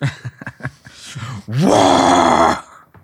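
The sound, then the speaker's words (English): A voice makes a series of short, rhythmic guttural grunts, then breaks into a loud, raspy vocal-fry scream that rises in pitch, holds for about a second and cuts off abruptly. “I remember trying to do the vocal fry as a kid too. I just sounded like a child screaming.”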